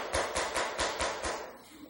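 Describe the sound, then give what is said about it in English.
A steady series of six sharp knocks on a door, evenly spaced and quick, each with a hollow thud, fading slightly toward the end. No one speaks. “So they stopped at the first inn they came to, and they knocked on the door.”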